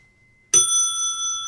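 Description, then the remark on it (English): A single bright strike of an alloy bicycle bell rings out, its clear metallic tone sustaining and slowly fading after the sharp initial ding, with near silence before it. “Let me just show you the difference again. Same bell made by the same company. Alloy.”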